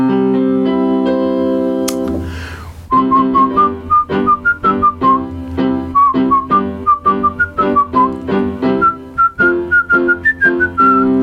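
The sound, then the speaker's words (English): A bouncy tune on a small electronic keyboard: a held chord, a brief swoosh, then a quick, steady rhythmic accompaniment under a high, reedy melody line. Fairly loud, with no talking. “I got a little keyboard in front of me.”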